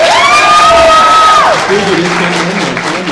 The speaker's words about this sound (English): All right, audience. If it's Black Widow, applaud.